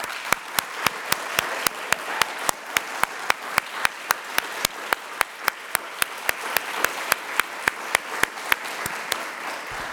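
An audience applauds the announcement of a third-year student as winner of the 7th annual Gregory H. Swanson Award, with sharp individual claps standing out at a regular pace over a dense wash of softer clapping, moderately loud and sustained throughout.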